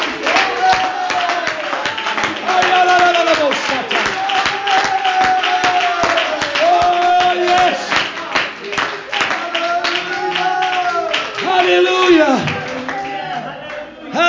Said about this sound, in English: Come on, put your hands together and clap unto the Lord.